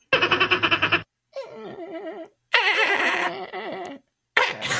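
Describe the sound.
A voice imitating a dolphin in an animal-sound guessing game: a rapid pulsing chatter, then loud, high, wavering squeals that warble up and down in three or four bursts separated by brief pauses.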